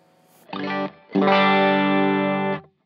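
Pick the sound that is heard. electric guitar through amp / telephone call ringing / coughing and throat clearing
electric guitar through amp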